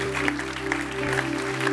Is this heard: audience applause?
yes